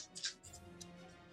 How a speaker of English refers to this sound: You hear a lot of dice there in your hands shaking.